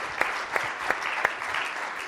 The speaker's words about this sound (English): That's definitely worthy of a round of applause.